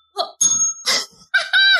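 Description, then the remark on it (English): A small bell rings several times in quick succession, with bright metallic dings and a short ringing tone after the last strikes. It is fairly loud, and nobody speaks. “I'm trying to get my bell.”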